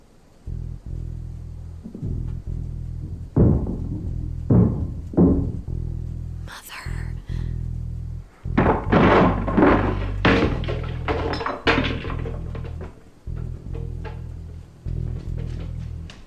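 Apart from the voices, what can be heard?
knocking on a door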